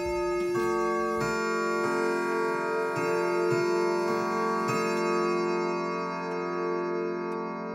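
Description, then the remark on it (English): A grandfather clock beside a fireplace chimes midnight with sustained, ringing bell tones, each new strike layering over the fading hum of the last. The chiming is steady and resonant, heard alone without any voices. “Our discussion was interrupted by the grandfather clock that sat next to the fireplace. Midnight.”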